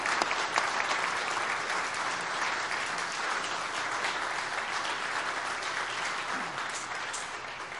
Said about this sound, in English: So we want to thank these, and so I'm going to ask you to applaud again, and loudly for them.